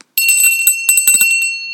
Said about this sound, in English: That's a story bell.